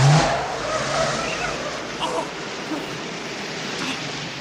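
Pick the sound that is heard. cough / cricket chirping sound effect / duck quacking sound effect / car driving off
car driving off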